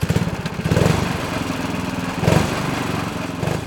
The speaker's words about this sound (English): She pulled the starter coil on the go-kart, and it backfired and spat like a lawnmower on its last leg.